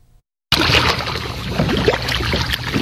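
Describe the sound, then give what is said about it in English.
After a brief silence, splashing water from an experienced swimmer's open-sea strokes, on a swim from Wushi Harbor in Yilan out to Turtle Island with a kayak alongside, fills the rest, a steady churning slosh with small irregular surges and no voices. “In the blue expanse, this experienced swimmer catches his breath between strokes on a swim out to Turtle Island. In a kayak alongside, a safety observer stays with him and records the entire swim as a testament to this man's feat of endurance.”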